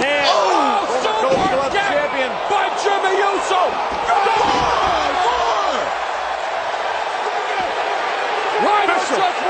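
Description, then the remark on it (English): A heavy thud of a wrestler slammed onto the ring mat during a SmackDown Tag Team Championship match booms out over a loud, roaring arena crowd, with a few more sharp impacts and shouting voices throughout. “He slams him out.”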